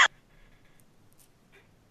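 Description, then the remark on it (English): A single sharp cough bursts out loudly right at the start, then fades into a faint, quiet background with only soft murmurs. “Sorry, I'm coughing there.”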